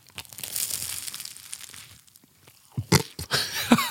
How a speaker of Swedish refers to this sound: Det är ju flarn överallt nu. Ja. Men det, hör ni, får ni höra? När det också ramlar flarn. Vi ser om det hörs.